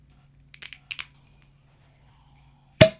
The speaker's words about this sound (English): Would you like to open this bottle? Sure.